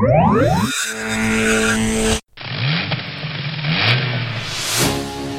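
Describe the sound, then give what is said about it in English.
A powerful Bentley car engine revs loudly, its pitch sweeping up and down, cuts out for a split second, then roars and revs again with no voices. “Nice car, sir. Is it yours? Is it a Rolls or a Bentley? It's a Bentley.”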